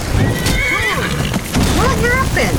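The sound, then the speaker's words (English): A horse whinnies loudly after a bandit smacks it with a hammer, its shrill, wavering neigh rising and falling twice over a dense, noisy background. “The bandit said you picked a bad time to get lost, friend, and then came up and smacked our horse with a hammer.”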